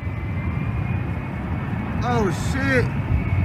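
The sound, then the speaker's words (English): A jet aircraft with vertical thrusters comes in for landing and crashes after something goes wrong with a thruster: a steady, heavy jet engine roar rumbles throughout with no break, and near the end a man's voice briefly exclaims over the noise. “Yeah, so he's coming in for landing. Something clearly went wrong with the vertical thrusters after touchdown.”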